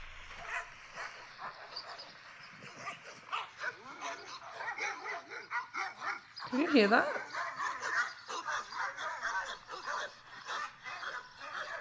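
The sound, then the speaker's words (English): Several dogs bark furiously in rapid, overlapping bursts that go on without letup, with sharp yips and a rattle of chains as they jump and pull at them trying to run at a car, while a person speaks briefly over the commotion. “And that's not just them barking. That's them pulling at their chain, trying to run at the car.”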